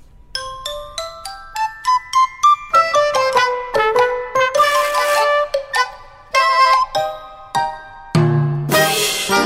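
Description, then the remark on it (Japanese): A bright email notification chime plays alone as a quick run of bell-like tones, rising and falling in a short melody, with shimmering bursts partway through and at the end. “ちょっと待って、 はい、 メールの着信も、 はい、よかったよかった”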